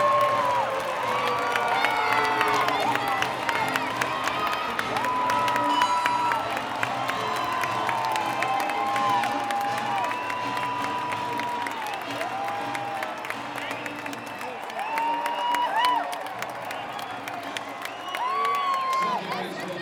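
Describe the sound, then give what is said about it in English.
A large stadium crowd roars and cheers for about twenty seconds after a home run, a dense, sustained wall of voices with scattered shouts and whoops rising above it, swelling slightly near the end. “Listen to that crowd.”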